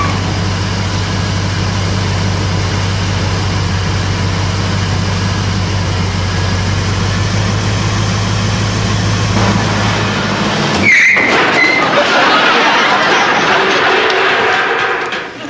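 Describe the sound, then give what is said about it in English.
A new car's engine idles with a steady low hum for several seconds, then a sharp knock and the sound shifts as the car pulls away, engine noise rising and filling out. “Oh, new car. I gotta learn all this stuff. All right. This time we're really going.”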